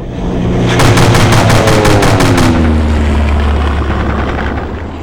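A loud seaplane propeller engine drones steadily while a rapid burst of machine gun fire rattles out over it for about two seconds, then the engine keeps roaring alone.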